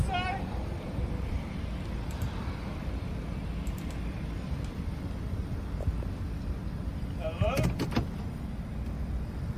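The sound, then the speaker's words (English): Steady low rumble of a car interior at a McDonald's at night, then near the end a sharp cluster of clicks and clunks like a car door opening as someone climbs out, with faint voices in the background. “Now she's getting out the car, I think, or someone's getting out the car.”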